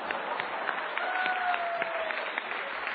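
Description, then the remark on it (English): A crowd applauding the actress who played Star Trek's Lieutenant Uhura, many hands clapping in a dense, continuous wash that holds at an even, moderately loud level for a few seconds. “You are an intergalactic Rosa Parks, and we applaud you, baby.”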